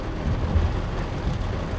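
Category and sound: nature, heavy rain with thunder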